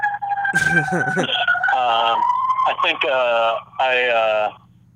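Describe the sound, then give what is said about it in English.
Sirens of two fire trucks pass by an apartment in Brooklyn, loud and continuous, shifting between long rising-and-falling wails and quick warbling yelps, over a steady low engine rumble that fades at the end. “Sorry, there's two fire trucks coming by my apartment right now.”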